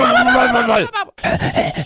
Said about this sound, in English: God bless you. How does a sneeze get thrown into the noise?